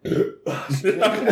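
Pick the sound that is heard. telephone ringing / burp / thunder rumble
burp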